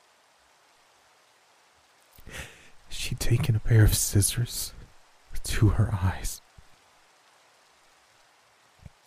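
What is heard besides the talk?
rain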